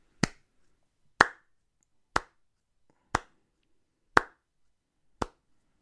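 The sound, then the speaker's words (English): Six slow, deliberate hand claps at a steady pace of about one per second, each a sharp, crisp smack with a short decay, with no voices. “Let's applaud. How about a standing O?”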